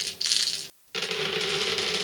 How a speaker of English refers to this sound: So let me just roll some dice here real fast.